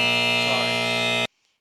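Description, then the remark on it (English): A loud, harsh buzzer sound effect, used to buzz a woman who is speaking, blares steadily for just over a second, a dense electronic drone rich in harmonics, then cuts off abruptly into silence. “Sorry, I miss buzzing her a lot in there.”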